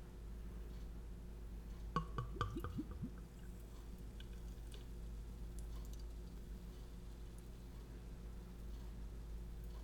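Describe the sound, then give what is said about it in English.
Beer glugs and splashes briefly into a glass as it is poured, a few gurgling pulses followed by a soft fizzing hiss over steady low hum. “Might as well just pour the whole beer at this I'm point. Pouring it.”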